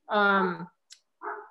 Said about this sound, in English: One dog or multiple dogs? Yeah. There's two. They're egging each other on.